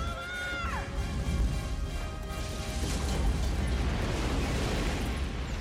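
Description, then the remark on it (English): A loud, sustained cinematic explosion from the film Independence Day, the scene of the dog running from the explosion, roars and rumbles for several seconds, a dense wall of low booming noise, with a brief descending whine near the start. “The dog running from the explosion.”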